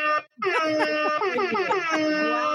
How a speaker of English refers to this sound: if I can get my hip hop air horn button to work, you get all of them.